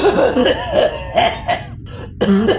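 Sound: heavy coughing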